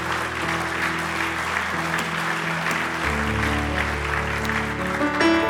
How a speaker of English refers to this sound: If you're glad for his word, let me hear your hands.